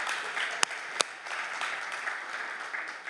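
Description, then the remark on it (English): A crowd applauds a preacher's point about tithing in a steady, dense wash of clapping, with two sharp, louder claps standing out early on before the applause carries on evenly. “If you're gonna clap, clap.”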